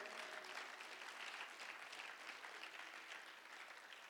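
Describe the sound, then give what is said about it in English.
An audience claps for bishops in Ghana in a dense, steady wash of applause that holds an even loudness for about four seconds, with no voices standing out above it. “Yes, let's clap for them.”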